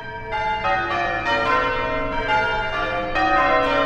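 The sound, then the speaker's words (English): Church bells rung by bell ringers in a rapid, overlapping sequence of change ringing, each new strike arriving about every third of a second, loud and resonant with long sustaining tones and no voices. “The fourth example of people playing bells is called change ringing.”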